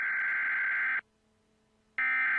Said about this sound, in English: And periodically they would break into the program with this long beep. And then they'd say, we interrupt this program to bring you the special report from NBC News.